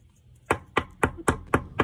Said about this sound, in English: I just want everybody at home to listen to me tap this on the desk.